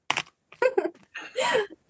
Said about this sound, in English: Yep. Just making dice noises at us to scare us.